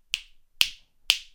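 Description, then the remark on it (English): Three crisp finger snaps at an even, unhurried pace, clear, each a sharp bright click that fades quickly, with no talking. “I understand it might be unlikely that people go vegan once I snap my fingers.”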